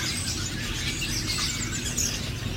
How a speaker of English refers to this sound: And the number one bird in the world, as far as how many there are, is the house sparrow. You see these guys and you hear them throughout cities all around the world. When I hear them, I feel like I'm in some suburban area.